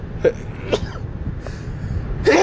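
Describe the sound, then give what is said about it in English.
A few short, breathy bursts lead up to one loud, sharp sneeze near the end, with no talking. “I sneeze there.”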